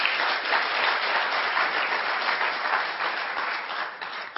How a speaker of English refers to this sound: And you should clap. That's all because of you, all of you that have supported in so many ways Honor Flight.